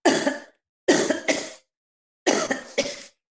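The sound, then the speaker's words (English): A person recovering from COVID in Brighton coughs several times in three harsh bursts: a single cough, then two quick double coughs with short pauses between. No one speaks. “I'm going to give you a cough.”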